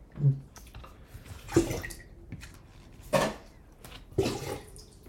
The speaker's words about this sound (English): I think we got real quiet, I guess, and I feel like we picked up those pouring sounds.